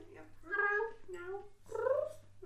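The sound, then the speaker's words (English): A person's voice imitates a happy kitten, giving three drawn-out, gliding meow-like cries in quick succession, moderately loud, with a low steady hum underneath. “Make happy kitty noises.”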